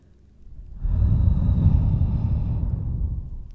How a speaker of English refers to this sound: This exercise in deep breathing also activates the parasympathetic nervous system. So not the sympathetic, not the fight or flight, but the rest and digest, or the nervous system that is activated when we're in a state of relaxation,